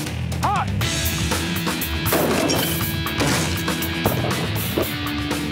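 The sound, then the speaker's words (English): A person bolts into a solid door trying to break right through it: several heavy, loud thuds and bangs over a constant, busy wash of noise, with faint voices mixed in. “I see the first door. My strategy was just to bolt right through it. Bad idea. That thing was solid.”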